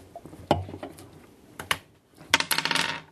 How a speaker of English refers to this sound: This was the dice that I rolled.